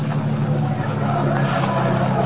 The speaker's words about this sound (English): Oh, here we are. Drive right through the gate. You can park alongside that car.